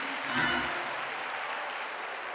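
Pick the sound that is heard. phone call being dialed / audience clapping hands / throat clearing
audience clapping hands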